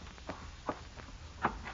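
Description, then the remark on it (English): Footsteps walk down a hallway, about five soft, evenly spaced steps in a steady rhythm over a faint low hum, with no talking. “And then you hear footsteps down the hall.”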